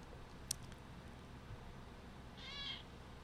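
A single short meow from a cat named Junior, high-pitched and fairly soft, rises near the end over a low steady background hum, with a brief click earlier on.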